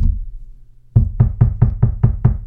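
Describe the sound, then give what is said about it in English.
A quick run of seven firm knocks on a door, evenly spaced, following a brief moment of low rumble. No one speaks. “And the Nazi Germans come knock on your door.”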